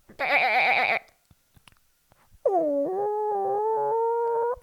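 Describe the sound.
A woman imitates a goat with a loud, quavering bleat, then after a short pause with faint clicks, gives a long, steady, drawn-out chicken call.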